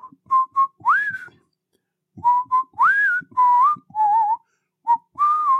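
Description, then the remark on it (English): Someone whistles a short, bouncy melody, the theme tune of a 1970s TV show, two phrases of quick notes and rising slides separated by a brief pause, with no one talking. “Hers is, she does her best to whistle.”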